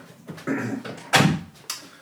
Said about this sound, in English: And hang on, I'm just going to close this door. Let's do that. Let's make that happen.